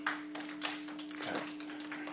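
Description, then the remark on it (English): Several scattered hand claps from children in a room who were asked to clap, soft and sharp, come at an uneven pace over a steady low hum, with no one speaking. “I need somebody to clap.”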